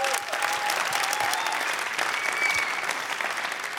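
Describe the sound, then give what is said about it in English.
An audience claps steadily for a few seconds as a guest comes on stage: a dense, even wash of hand claps at constant loudness, with a faint cheer or whistle rising above it. “And I want to ask you, yes, applause.”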